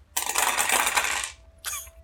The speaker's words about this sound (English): I like how it just sounds like you walked into your friendly local gaming store and knocked over their dice display. That's what you get when you have 6d6 sneak attack or backstab